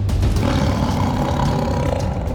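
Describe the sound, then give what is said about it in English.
A deep, rumbling growl from a massive saber-toothed tiger with a white spotted coat in a hall, echoing off the walls, loud, holding steady for a couple of seconds with a rough, reverberant low roar and no voices. “And following that, a massive saber-toothed tiger padded its way into the hall.”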